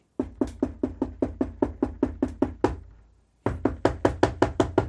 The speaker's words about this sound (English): knocking on the door. Someone opens the door.